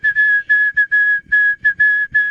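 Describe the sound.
Someone whistles the same single note over and over in quick, choppy bursts of varying length, fairly loud, with no melody and no talking.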